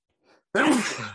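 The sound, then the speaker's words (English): A single loud sneeze: a faint breathy intake, then a sudden explosive burst that trails off into a rough exhale, with no one speaking. “And if somebody in our messages doesn't say bless you, I'm going to be highly.”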